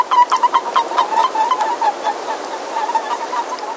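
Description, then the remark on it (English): A chorus of breeding male boreal toads calling softly in Glacier National Park: a rapid series of quiet, high chirping peeps that overlap and repeat steadily over a constant watery hiss. “Crowds of breeding boreal males calling softly to define and defend their turf.”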